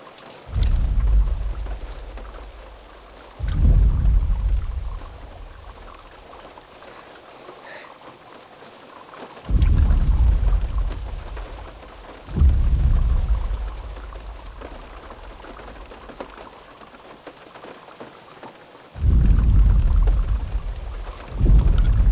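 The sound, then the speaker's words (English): Deep, distant booming dinosaur footsteps, from a film scene conceived by Spielberg, land every few seconds, each a heavy low thud that swells and slowly fades, over a steady hiss of falling rain. No voices. “So you hear the boom of the distant footstep, and there's not only the ripple in the cup, but the mirror in the car that the kids are in rattles.”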